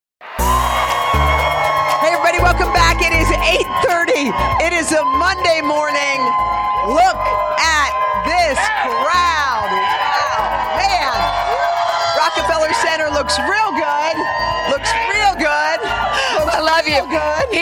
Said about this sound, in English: I mean, this is an enthusiastic crowd, right? Yes! Oh, yes! By the way, if you didn't know better, you'd think we have a concert out here.